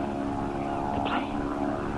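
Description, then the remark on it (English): A propeller airplane about to land drones steadily overhead, its engine hum loud and continuous with a throbbing, layered tone and no voices present. “I just didn't want anyone from the plane to see me.”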